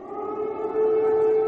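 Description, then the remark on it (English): A loud, steady air raid siren in Kyiv, Ukraine, in the morning during Russia's invasion, holds one sustained wailing pitch throughout, with faint harmonic overtones and a slight swell in volume partway through, no voices present. “Air raid sirens in Ukraine's capital, Kyiv, this morning as Russia's invasion enters its third week.”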